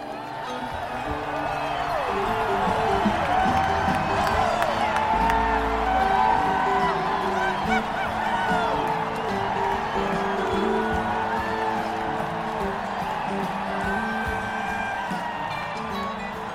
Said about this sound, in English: Where there are many huge applause moments, this is the biggest. If you listen to the audience version especially, the audience goes fucking ballistic for like 20 seconds when this song starts.